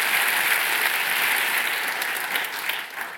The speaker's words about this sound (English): All right, I think it's right to let the applause go on a little bit there.